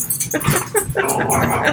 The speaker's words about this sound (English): and then our dogs decide that they're going to play one time in the last, 8 hours.